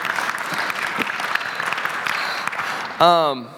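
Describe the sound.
A church audience claps steadily in a dense wash of applause for about three seconds after the first song, then a man's voice cuts in loudly over the fading clapping.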